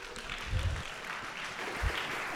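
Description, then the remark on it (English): A crowd applauds steadily as a guest speaker is invited up to the stage on a campus in Tucson, a dense wash of overlapping claps at moderate volume with a couple of low thumps, sustained throughout with no speech. “So James, if you want to come on up and give him a round of applause.”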